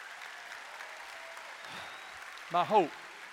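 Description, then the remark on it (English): A church audience claps steadily at the close of a sermon, in a dense, even wash of applause, and near the end one voice lets out a short, rising-and-falling whoop above the clapping. “Go ahead and clap.”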